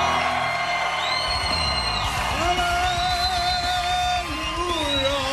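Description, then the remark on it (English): A loud, dense live crowd at Keenan's Irish Pub cheers and whoops continuously at the official opening of the Jersey Shore, during The Preston and Steve Show on 93.3 WMMR, with rising and falling shouts and high-pitched whoops layered over a steady roar of many voices. “Oh, man, this crowd is on fire.”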